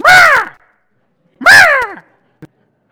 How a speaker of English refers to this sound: Now, we were walking into the store yesterday in Lafayette, and up on a light pole in the parking lot was this crow just squawking at everybody.